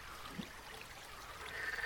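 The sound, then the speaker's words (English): Faint frogs croaking at a pond at night, a brief low croak followed by a thin, steady trilling call over a soft hiss of trickling water in the background. “I'd like to imagine these frogs are, like, having, like, a beach party.”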